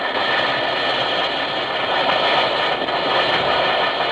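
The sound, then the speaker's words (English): An Alka-Seltzer effervescent tablet fizzes steadily in water, a dense crackling hiss of tiny bursting bubbles that holds an even, fairly loud level for about four seconds with no voices. “Listen to it fizz.”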